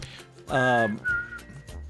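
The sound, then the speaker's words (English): A person whistles a brief melody, two sustained notes of birthday music, with a breathy voiced hum blending in under the first note. “I'm whistling the birthday music here.”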